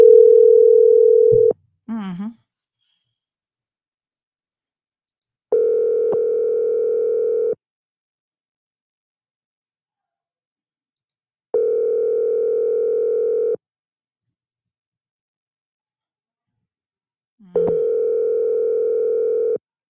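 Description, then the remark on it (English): A WhatsApp outgoing call ringing tone while calling a scammer: a short tone and a quick warbling chirp, then three steady, clear two-second rings separated by long silent gaps, with no one answering. “So they're on WhatsApp. Let's call them from WhatsApp.”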